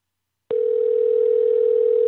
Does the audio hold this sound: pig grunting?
no